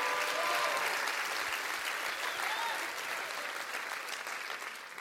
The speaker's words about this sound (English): Come on, clap your hands all over the house.